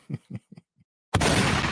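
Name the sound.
gunshot sound effect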